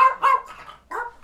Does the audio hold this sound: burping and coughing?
no